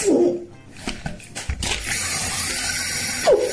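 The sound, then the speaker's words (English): Water runs from a tap in a steady, hissing rush after a few brief knocks and clatters, with short squeaky tones at the start and again just before the end, as a man tries to wash toothpaste out of his eye. “Trying to wash out his eye.”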